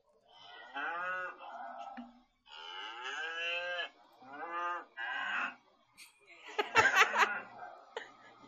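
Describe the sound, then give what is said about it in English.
Several cows moo back and forth in a run of long, drawn-out calls with rising and falling pitch, loud, ending with a harsher, noisier bellow and a brief chuckle. “Those are some cows having a fucking conversation.”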